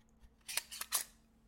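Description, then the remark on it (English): A wallet is opened and handled, giving three quick, scratchy rasps in a row, bright and crisp but fairly soft, with no voices. “I don't have a phone. This is just a wallet.”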